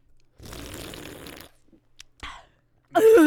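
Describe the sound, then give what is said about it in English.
A loud, wet slurp lasting about a second, followed by a couple of short clicks and then a sudden burst of a voice. “Okay, everyone who has missed my slurp takes, are you ready?”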